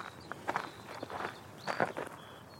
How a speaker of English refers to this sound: And that crunching sound means that I'm back on a farm track in the east of England, UK.